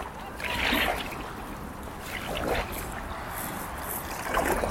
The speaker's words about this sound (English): Okay, I'll just keep paddling on my own, shall I?